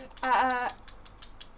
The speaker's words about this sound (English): Dog's having an itch. Arthur just wants to be a star. That's what it is. Arthur, stop it.